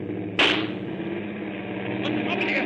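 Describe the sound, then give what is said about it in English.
A single sharp gunshot, the shot fired at Major Strasser in a Casablanca film scene, cracks out and decays quickly over a low, steady background hum, with faint murmuring sounds toward the end. “Someone has just shot Major Strasser.”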